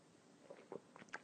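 A few soft slurping sips of coffee from a mug, several short wet mouth sounds in a row over a quiet background, with no talking.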